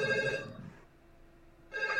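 A telephone ringtone from a horror movie trills in two bright bursts of rapid ringing, separated by a quieter gap, fairly loud with no voices.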